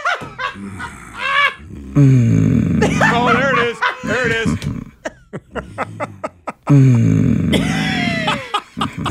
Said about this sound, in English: Menacing, guttural, growling. Whoa. That sounds serious.